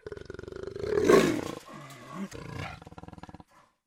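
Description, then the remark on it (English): A deep, loud roar from a large creature with a huge mouth and sharp teeth rises to a rumbling peak, then trails off into pulsing growls over about three seconds, with no one talking. “She roared again.”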